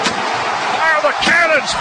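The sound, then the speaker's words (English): Stadium cannons fired after a Tampa Bay Buccaneers touchdown that takes the lead with 9 seconds left burst over a loud, sustained crowd roar: one blast at the start, then more about a second later, with a voice faintly audible in the din. “Buccaneers take the lead with 9 seconds. Kate Otten, fire the cannons!”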